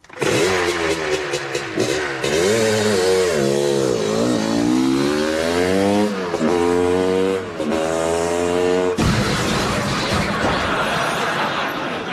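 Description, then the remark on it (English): A motorcycle engine roars and revs continuously during a Wall of Death stunt act, pitch rising and falling in repeated sweeps as it circles, loud and sustained before cutting into a rougher, noisier rumble near the end. “It's Mad Mick McMurtry, the motorcycle maniac, and the Wall of Death.”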